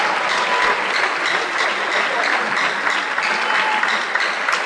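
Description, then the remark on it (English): A church audience applauds for Jesus, a dense wash of many hands clapping at an even loudness for several seconds with no voices standing out. “Clap for Jesus for what you have said.”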